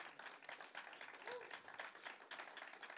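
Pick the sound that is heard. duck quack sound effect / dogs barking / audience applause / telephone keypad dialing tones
audience applause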